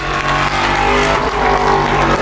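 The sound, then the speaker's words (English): An Aston Martin race car roars past with a loud, steady engine drone and rich low harmonics, its pitch shifting slightly as it goes by; no voices. “It's an Aston goes past.”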